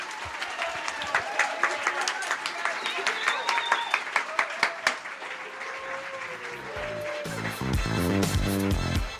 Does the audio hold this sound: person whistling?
no